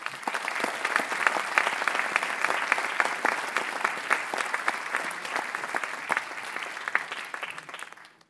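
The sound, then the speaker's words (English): A crowd at a New York Historical Society event applauds steadily to welcome speakers to the stage, a dense patter of many hands clapping at an even, fairly loud level for several seconds before it begins to trail off at the very end. “And now, as always, please make sure that anything that makes noise, like a cell phone, is switched off before joining me in welcoming our speakers to the stage.”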